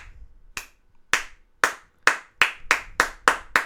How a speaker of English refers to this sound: I mean, I could start a slow clap.